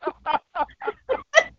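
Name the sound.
duck quacking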